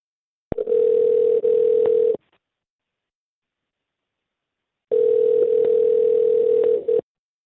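Two long ringback tones from an outgoing phone call made by the radio station Mix 94.7 for its segment Waiting by the Phone, each a steady electronic hum lasting about two seconds, separated by a long silent pause, heard clearly with no talking.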